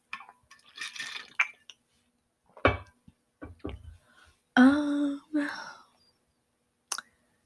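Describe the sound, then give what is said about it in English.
Liquid sounds of water: a few soft clicks and knocks, then short bursts of water pouring or sloshing, followed by quiet gulps of someone drinking, with near silence in between. “Sorry, I'm like, my throat is kind of dry. I need some water.”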